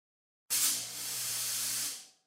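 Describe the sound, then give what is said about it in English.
A fog machine blasts out a loud, steady hiss of spray for about a second and a half, starting abruptly and tapering off at the end, with a faint low hum underneath. “Hit the fog machines.”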